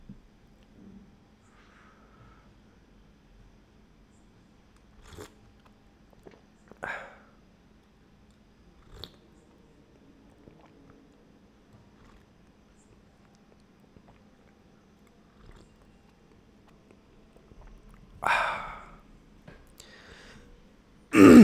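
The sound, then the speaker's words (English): A few quiet, short sips from a drink, spaced seconds apart with a low hum in the background, followed by a louder slurp and a breathy exhale near the end. “I'm gonna take my sip now.”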